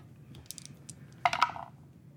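Dice clatter on a hard tabletop, rolled for an investigation check in a tabletop roleplaying game and totaling 29: a few light taps, then a brief, brighter burst of rattling clicks that quickly settles, over a low background hum with no one talking.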